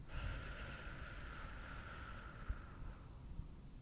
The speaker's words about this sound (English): Take a deep breath in, and then release and breathe out. Breathe in. Releasing, breathing out.